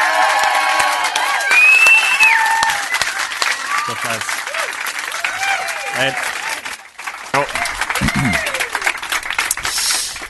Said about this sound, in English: A pleasure, and it was a delight to be welcomed by such a spontaneous round of applause. They really didn't need any encouragement to do it.